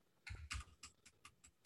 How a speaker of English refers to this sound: Whatever you're typing, it is loud. I was clapping with my keyboard.